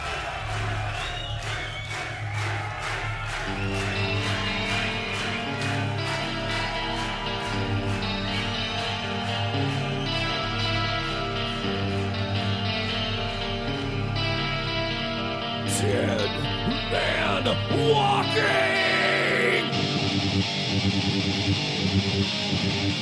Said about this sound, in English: Like, there's, I don't know, 10 or 15 seconds of crowd noise, and then they do that little intro melody, and then before the 30 second mark hits, you're already at the riff.